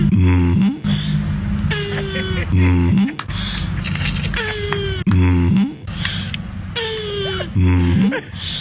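Turtle mating noises, loud repeated groaning, whining calls with squeaky rising and falling tones, mixed with raspy bursts of someone clearing their throat, cycling roughly every second or two.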